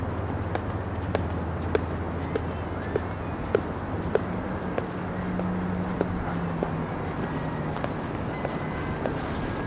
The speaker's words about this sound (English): And through the water, it's giving, I don't know, movie. I'm like, is that her personal horse or their personal horse? Like, what's going on? Anyway, there's a black and white, quite stunning stallion running through the beach.